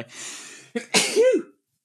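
A single loud sneeze: a breathy inhale building up, a brief catch, then a sharp explosive burst trailing into a voiced exhale before silence.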